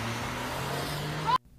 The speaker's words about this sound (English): She hit his car and now they're driving like this.